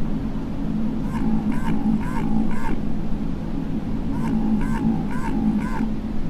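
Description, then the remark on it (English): An Antarctic minke whale's bioduck call, recorded underwater in the Southern Ocean off Antarctica: two sets of four rapid, quacking pulse bursts, each a mid-pitched, buzzy duck-like sequence, over a steady low underwater rumble. “Bioduck sounds like ducks quacking.”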